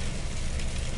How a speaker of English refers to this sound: Should we let the rain take you into your next song?